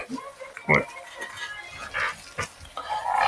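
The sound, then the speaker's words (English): A Husky dog named Juno grunts and snuffles, a series of short, irregular snorts and sniffs that sound almost piglike, with a few brief clinking noises in the background. “I got a dog yesterday, so she is here.”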